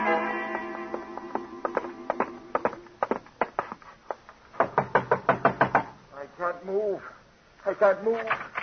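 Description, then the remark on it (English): Loud knocking on a locked door comes in uneven bursts, ending in a fast run of hard raps, while voices talk before and after the pounding. “The door's locked, Gino.”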